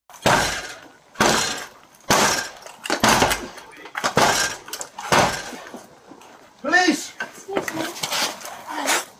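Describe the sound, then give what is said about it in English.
A Metropolitan Police officer breaches a door with a battering ram at 11:45 p.m. at a scaffolding-covered property in Brondesbury Park, in body cam footage. About six loud, heavy crashes come at a steady pace, each with a splintering rattle, before people start talking. “Body cam footage captures the moment an officer breaches the door using a battering ram”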